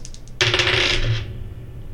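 A couple of light clicks, then a bright clatter of two small dice tumbling across a surface for under a second before settling into quiet. No one speaks.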